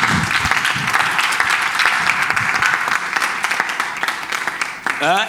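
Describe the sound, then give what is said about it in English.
A crowd applauds steadily, dense overlapping claps forming a continuous rushing wash for several seconds, with a voice rising briefly near the end. “Clap and let me feel your presence.”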